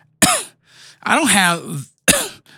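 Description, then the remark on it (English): Two sharp, loud coughs separated by a longer, rough, voiced throat-clearing sound, with no talking. “But I definitely have some kind of cough that's been pissing me off.”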